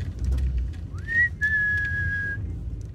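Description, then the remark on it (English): A person whistles two clear notes outdoors, a short rising slide followed by a long steady high tone, over a low rumble of background noise. The whistle calls street cats at night, which come running to a gate to be fed. “They recognise your whistle?”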